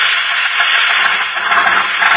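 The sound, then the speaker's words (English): An old car motor runs steadily throughout, a loud, continuous rough hiss-like drone with little low rumble and no voices over it. “Have you ever heard a motor like this one?”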